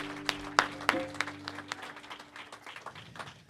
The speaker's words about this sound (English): Can we give a round of applause to Lord Jesus Christ?